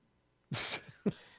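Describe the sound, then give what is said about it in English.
A single loud sneeze bursts out of near silence as a sharp, hissing blast, followed by a brief second puff of breath, with no talking. “Bless you, …. Bless you.”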